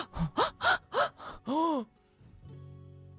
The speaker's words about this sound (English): A gasp came from around the fairy court.